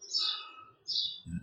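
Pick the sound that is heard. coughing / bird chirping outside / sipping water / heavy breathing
bird chirping outside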